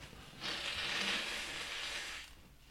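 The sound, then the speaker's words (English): A single sustained, breathy honk of air lasting nearly two seconds as someone blows their nose hard, fairly loud, with no talking. “I'm going to blow my nose.”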